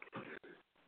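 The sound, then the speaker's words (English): A sudden sneeze bursts out loudly, then a second, softer gust of breath follows right after, with no talking around it. “Bless you.”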